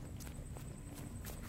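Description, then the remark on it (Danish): Hurried footsteps of Jewish refugees running in silence through the night toward boats in October 1943, a handful of soft thuds in uneven rhythm over a steady low rumble and a faint thin high-pitched whine. “De 230 jøder løber gennem natten i stilhed.”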